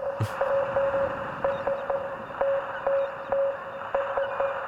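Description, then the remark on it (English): A Morse code SOS signal: a steady, high-pitched tone keyed on and off in long and short beeps, repeating over a constant bed of radio static hiss. No one speaks. “That sounds like Morse code. Whoa, wait, that Charlie. Sounds like a call for help, an SOS.”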